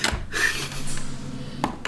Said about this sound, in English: Oh, wait, I rolled the wrong dice.